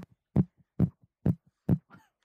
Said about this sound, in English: it's a rave. There's a rave going on.